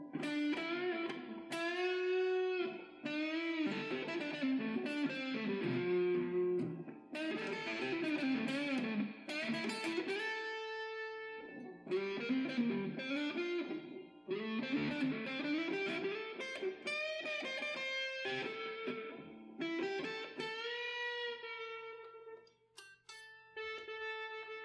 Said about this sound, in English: These strings are so thin. That sounds so much better with a lot more reverb, because you can cover up your mistakes.